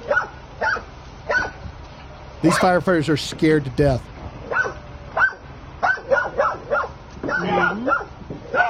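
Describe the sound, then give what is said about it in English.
A pit bull barks aggressively at firefighters holding axes, in a loud, harsh burst of several rapid barks near the middle, with people talking over and around it before and after. “There's another one barking.”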